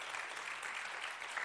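A church audience claps steadily for the children's last day of school, a dense, even wash of many hands with no pauses, moderately loud throughout.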